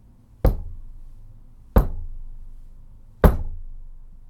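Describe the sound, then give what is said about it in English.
Three heavy, evenly spaced knocks on a wooden door, each a deep thud with a short ringing decay, with no voices. “His trust in Mother Truth deepened as he knocked three times.”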